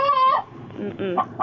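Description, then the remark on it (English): A voice imitates a chicken, giving a drawn-out squawking cluck followed by a few shorter, rising clucks, fairly loud with a slightly thin, phone-like tone. “Okay, you passed the chicken test.”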